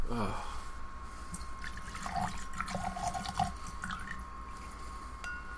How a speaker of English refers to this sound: Well, I'm trying to pour a drink.